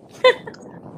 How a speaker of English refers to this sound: and I'm gonna sneeze.